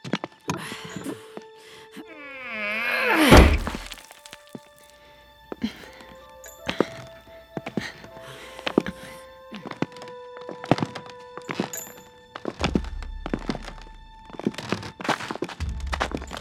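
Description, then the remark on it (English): A wooden trap door creaks open and lands with a heavy thunk, followed by a long run of steady, echoing footsteps thudding down steps into a basement at an even pace. “A trap door. It must lead to the basement.”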